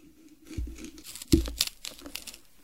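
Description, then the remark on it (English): Crisp, crunchy bites into a Honeycrisp apple: two sharp cracking crunches, each with a dull thump, followed by softer crackly chewing. No one speaks. “That is the texture of the Honeycrisp.”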